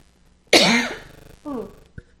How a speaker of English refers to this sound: Sorry, guys. I should have paused for a second, but or muted myself, but I forgot. Oh, you're fine. Everybody's going to be okay. It's a cough. We've all had a cough.